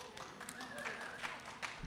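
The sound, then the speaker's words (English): Scattered, fairly light applause from an audience at a St. Paul Almanac reading at the Java Express, with uneven claps over about two seconds and a faint voice murmuring underneath. “It only took me like forever to get here, but I'm reading at my first St. Paul Almanac. Applaud.”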